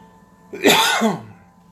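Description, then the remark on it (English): A single harsh, raspy cough caused by cigar smoke, fairly loud, lasting under a second with a rough throaty tail, alone against a quiet background hum. “Cough on cigar smoke.”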